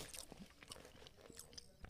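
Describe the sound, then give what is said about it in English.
Wet chewing with crunchy, squishy bites and smacking mouth sounds, repeating in an uneven rhythm for a couple of seconds, with no talking over it. “But you chew a lot.”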